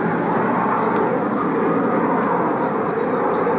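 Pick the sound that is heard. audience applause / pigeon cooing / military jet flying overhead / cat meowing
military jet flying overhead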